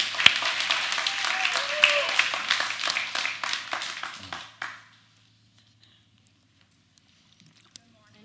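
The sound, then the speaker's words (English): A crowd applauds on a Mother's Day morning as someone is invited up to the stage, with dense, steady clapping for about four and a half seconds, then the applause cuts off abruptly into near silence with a faint low hum and one soft click. “So everyone give a round of applause.”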